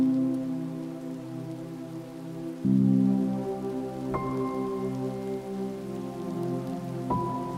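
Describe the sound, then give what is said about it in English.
Steady rain of the rainy season patters onto a hard surface in a continuous, even wash of droplets, moderately loud, with a low humming drone beneath it and no voices. “And I wanted to read it to you tonight because the rains are coming once again.”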